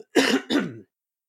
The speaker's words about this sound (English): I have to clear my throat, which is really quick.